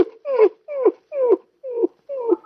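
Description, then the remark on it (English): A dog whimpers in five short, whiny cries, each sliding downward in pitch and spaced evenly apart, fairly loud with no talking. “for the last time, get your leg out of that dog's mouth.”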